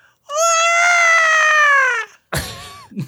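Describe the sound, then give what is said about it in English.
A video game baby's cry, Baby Mario crying: one loud, long wailing note that slowly sags in pitch, followed by a brief, harsher sobbing burst and a short whimper. “Yeah, it's Baby Mario.”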